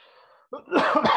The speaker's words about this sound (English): Sorry about coughing into that.